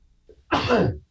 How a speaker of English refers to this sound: I'm going to sneeze in a minute.